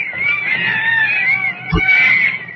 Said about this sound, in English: All right, listen to those monkeys chatter.